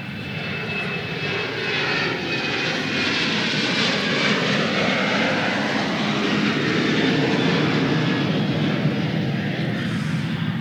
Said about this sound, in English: So verse 4, if you can, let's wait for this plane.